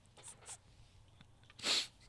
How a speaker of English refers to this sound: Are you okay? Well, that's staying in. My demon sneeze.